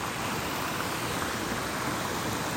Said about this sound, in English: I don't know if you can hear. Most likely you can hear the waterfall that I'm sitting next to.